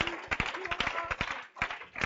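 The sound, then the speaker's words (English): A church audience clapping their hands in praise to the Lord, a dense, uneven patter of sharp claps, with faint voices calling out underneath. “Un aplauso fuerte, Señor. Let's clap our hands to the Lord.”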